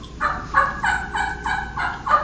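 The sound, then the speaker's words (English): A rhythmic series of about seven turkey yelps played on a call, each note breaking from a high pitch down to a lower one, loud with no talking. “And y'all listen to this yelp. You're going to hear a high, and it's going to slur to a low.”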